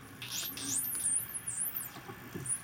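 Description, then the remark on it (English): Dolphins communicating: high-pitched squeaks and whistles warble rapidly up and down, mixed with scattered clicks and soft pops, continuing steadily for a few seconds with no one speaking. “I'm sure most of us are familiar with the sound of dolphins communicating. These clicks, squeaks, and pops that are so totally unique, so totally dolphin.”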